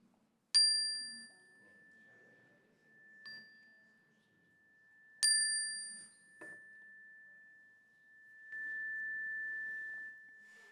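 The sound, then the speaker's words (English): A clear metal chime is struck three times during a prayer, each strike leaving a long, pure tone that rings on and slowly fades, with faint background rustling. “And speak them aloud as the chime rings so that we can hold them with you.”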